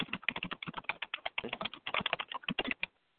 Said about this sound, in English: So I'm going to type this up right now and type this question up right now, and then I'm gonna jot down 2 choices here.